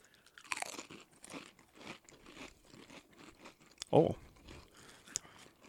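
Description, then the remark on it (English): Crunching and chewing on a crispy sriracha-flavored snack: a run of dry, irregular crunches, then one loud, sharp bite toward the end, with faint voices murmuring underneath. “I'm going for a sriracha one, I think.”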